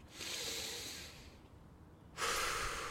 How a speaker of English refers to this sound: All right. All right. I'm lying down. I'm breathing more deeply.